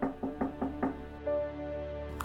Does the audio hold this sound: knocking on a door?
yes